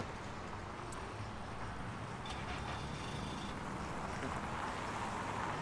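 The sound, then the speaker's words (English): A semi truck drives past amid steady, loud road rumble, its heavy engine and tire noise holding a constant level without a sharp peak, with faint higher whines mixed in. “You'll see the rig go by in just a second.”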